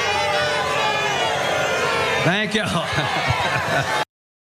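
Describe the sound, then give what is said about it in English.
A large crowd boos loudly and steadily throughout, a dense, sustained roar of voices, while a man thanks them for coming over the din near the end. “Right, they booed him for a long time.”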